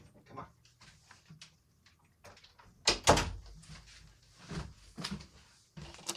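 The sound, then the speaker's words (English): A door being opened to let a dog in: scattered latch clicks and soft rattles build to a sharp double thud midway, followed by a few quieter knocks and shuffling sounds as it settles. “Can I just let my dog in for real quick?”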